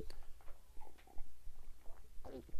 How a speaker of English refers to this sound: I'm thinking of, jeez, I need a sip of water over here, y'all.